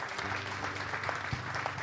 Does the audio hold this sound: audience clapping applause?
yes